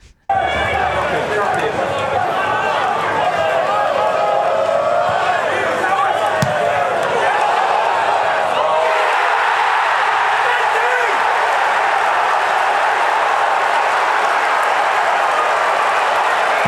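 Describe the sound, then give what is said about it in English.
A large football crowd roars and cheers continuously, a dense, loud wash of voices and applause that swells and holds steady throughout, with a brief sharp thud partway through. “The noise of the crowd is just pure ASMR for me.”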